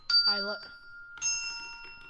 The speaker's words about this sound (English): Did you want to also include the bells? Yeah. I mean, we could accent just the downbeat of each bar with the... Oh! Bells.